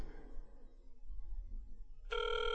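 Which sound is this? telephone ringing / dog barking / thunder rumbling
telephone ringing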